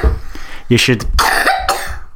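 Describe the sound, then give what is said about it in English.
A loud cough comes as a few harsh, raspy bursts in quick succession, with throaty voiced noise between them. “You should tell me when you're about to cough, and then I'll turn the microphone off, because no one wants to hear that.”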